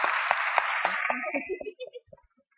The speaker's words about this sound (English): so round of applause.